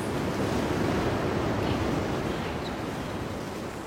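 Ocean waves wash in with a steady, full-bodied roar of surf, continuous, easing off slightly toward the end. No voices, just the rushing water.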